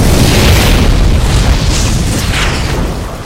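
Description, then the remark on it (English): A loud metallic roar, a harsh grinding growl with heavy rumbling low end, sustained for about three seconds and easing slightly toward the end, with no voices. “Just, it sounds like metal on metal growling through the air.”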